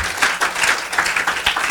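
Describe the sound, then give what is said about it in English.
An audience claps in praise of the Lord, a dense, steady wash of many hands with rhythmic surges of sharper claps throughout. No voices stand out over the applause. “Give the Lord a strong clap of praise.”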